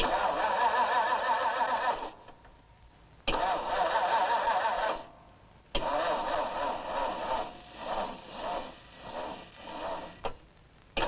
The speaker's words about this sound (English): Isn't that the quietest engine you've ever heard in your life?